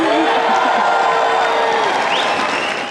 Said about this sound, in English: That was Danielle Smith in front of a raucous crowd of about 3,800 people.